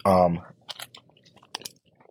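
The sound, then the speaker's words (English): A brief voiced hum opens, then moist, irregular chewing of a bite of bacon bagel with cream cheese follows: soft crunchy smacks at an uneven rhythm, a couple of sharper crackles standing out, fairly quiet throughout. “I'm going to take another bite.”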